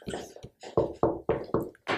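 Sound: knocking on a door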